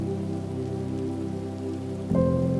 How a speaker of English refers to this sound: Waking up on a really rainy and stormy day, when you hear thunder and see lightning, and everything is just a little bit colder than it was.